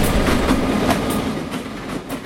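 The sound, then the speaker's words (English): A train rumbles past on tracks about 100 feet behind a house next to Spinrail Dune Buggy in North Bend, Oregon, a steady loud roar with rhythmic clacking of wheels over rail joints throughout, no voices present. “Our house is right here next to our business, and the train tracks run probably 100 feet, maybe, behind our house. So we hear the train.”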